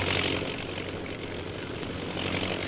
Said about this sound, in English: Look out, Kolu! That plane's flying pretty low.